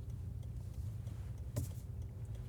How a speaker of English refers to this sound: Perfect. There's a car coming.